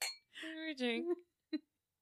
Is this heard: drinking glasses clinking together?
yes